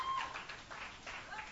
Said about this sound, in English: Thanks for clapping. That was fun.